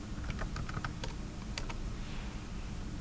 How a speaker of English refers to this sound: I'm gonna type in Snowball right quick.